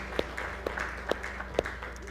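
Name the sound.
audience applauding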